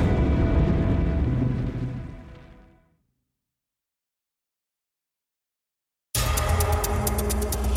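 A loud, rumbling blast roars and slowly dies away into silence, then a second explosion bursts in abruptly at full force, heavy, with no voices: fiery blasts at Pittsburgh's Allegheny Arsenal, an ammunition works, on September 17, 1862.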